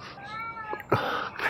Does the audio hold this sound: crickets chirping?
no